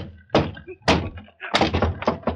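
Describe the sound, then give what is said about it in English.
In the radio drama Broadway's My Beat, a locked door is kicked in after the bell goes unanswered. There are two heavy, booming thuds a half-second apart, then a quick, loud flurry of four or five crashing blows as the door gives way. “Locked, I think. Lean on the bell, Mugovan. Yeah. Danny! Danny, something happened. Kick it in.”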